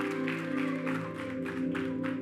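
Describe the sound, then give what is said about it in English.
An audience at a Mercy Culture Waco church service, held in a tent, claps steadily, the applause rising and falling in a loose rhythm over a sustained, humming keyboard chord playing underneath. “Yeah, you can clap.”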